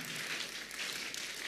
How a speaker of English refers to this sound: I like the way some people are clapping.